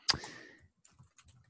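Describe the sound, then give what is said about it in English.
A sharp, loud keystroke is followed by a sparse run of softer clicks as two co-hosts type on computer keyboards. No one speaks. “Oh, there's the typing. yeah, you can hear it.”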